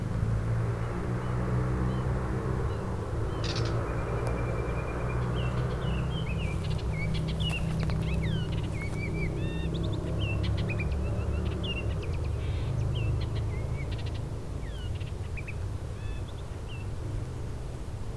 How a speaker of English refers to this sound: Baltimore Oriole doing a lot of vocalization.